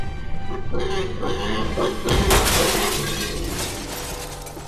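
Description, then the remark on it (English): Glass French doors leading out to a balcony on the 23rd floor shatter in a sudden loud crash about two seconds in, followed by a sustained bright spray of tinkling, falling shards over a low rumbling background. “Here I go. Through your French doors.”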